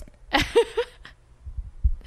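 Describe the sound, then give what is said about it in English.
A brief bright clink of teeth against a glass of Club W wine while taking a sip, with a short ringing tone, followed by a few soft, low thumps before it falls quiet. “I'm going to clink my teeth so you know that I'm actually doing it.”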